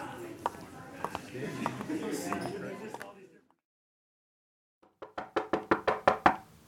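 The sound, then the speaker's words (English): About eight firm, rapid, loud knocks on an upstairs door in an even rhythm, coming after a short silence that follows a stretch of voices and background bustle. “Open up in there. I said open up.”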